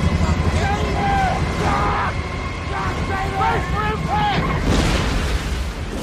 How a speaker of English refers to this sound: I think one of the more compelling, like, plane crash scenes I still have ever seen on film.